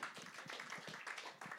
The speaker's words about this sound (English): Now some of you, hey, can I encourage you? Don't give a half-hearted clap, okay? Clap unto the Lord. It's not to me. It's not to anything I'm saying. It's for the Lord.